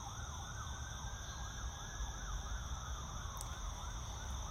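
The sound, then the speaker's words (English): Wailing emergency vehicle sirens passing outside rise and fall repeatedly, steady and continuous over a low rumble of traffic, with no one speaking. “I hear sirens.”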